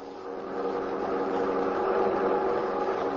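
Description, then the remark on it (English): The engine of a black Buick sedan fleeing along the road to Tunica drones steadily, a continuous mid-pitched hum with a faint rumble underneath, holding an even level throughout with no voices. “convicts who abandoned prison truck and kidnapped women and children have released victims and are now fleeing in black Buick sedan along road to Tunica.”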